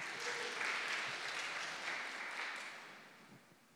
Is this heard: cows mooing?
no